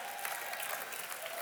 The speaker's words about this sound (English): And I only actually heard like two of you clap in here.